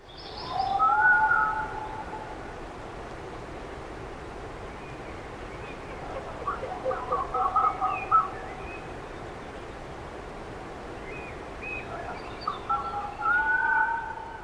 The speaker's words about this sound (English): Finally, someone pointed out that red foxes make a lot of weird sounds, mostly screams and sharp barks, but occasionally this sound.